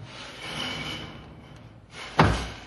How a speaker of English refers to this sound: Junior closed the door quietly.